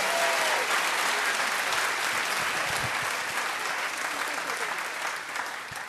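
A crowd claps steadily for several seconds, a dense, even wash of applause that stays loud throughout and only slightly thins toward the end, with no voices standing out.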